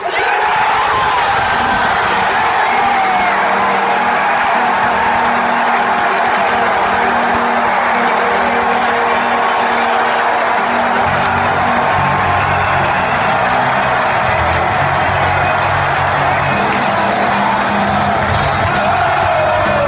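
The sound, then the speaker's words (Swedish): A loud, continuous roar of a cheering, yelling NHL hockey arena crowd after a goal, with the team's deep, sustained goal horn blaring underneath and shifting pitch partway through, lasting the whole time. “samtliga NHL-lag har ju de här egna brölande signalhornen”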